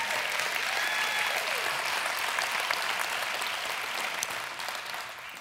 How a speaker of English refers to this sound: Okay, they've tried to clap a few times. Everybody just give the Lord a hand clap real quick.